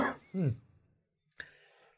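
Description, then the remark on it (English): A person with a frog in their throat clears it with a couple of short voiced rasps, then after a brief pause lets out one sharp cough, with no talking. “had a little kind of frog in my throat right there where it caught up on me. And I'm like, whoa, I need to clear my throat.”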